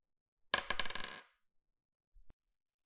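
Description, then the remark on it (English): A bright metallic jingle of real gold coins clinking together as someone kneels down and scoops them up, a dense shimmering burst about a second long, then a soft thud and a single faint tick. “Suri's gonna kneel down and pick up the gold coins.”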